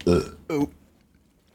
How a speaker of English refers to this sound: Oh, hold on, I got a burp.